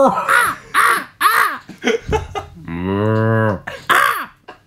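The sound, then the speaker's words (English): Seagulls fighting squawk harshly and repeatedly, loud, with a rapid run of raspy calls broken by a longer drawn-out wail before more cries. “There's more seagulls.”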